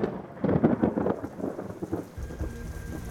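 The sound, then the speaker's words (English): Heavy rain pours down steadily over Fatima, with a deep rolling rumble of thunder swelling up near the end. No voices, just the dense hiss of the downpour and the low storm growl. “Fatima was drenched in heavy rains in the hours leading up to the miracle of the sun.”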